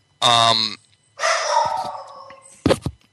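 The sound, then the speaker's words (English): A dog barks and yelps wildly: a loud harmonic bark, then a longer drawn-out whining howl, and a final sharp, short yelp, with brief silences between. “My dog is going wild.”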